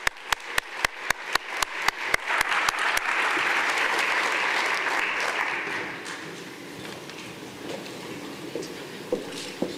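Audience applause starts as a few sharp, evenly spaced claps, quickly swells into a dense, steady wash of many hands clapping, then gradually thins and fades away. No one speaks.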